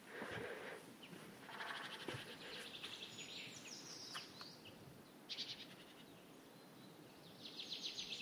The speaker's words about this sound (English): It's a chaffinch. There's that male chaffinch again.